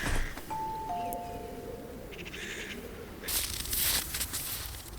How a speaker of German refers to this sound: Wo ist die Klingel? Ah, da ist sie ja.